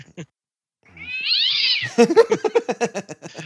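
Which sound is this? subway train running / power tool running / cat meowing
cat meowing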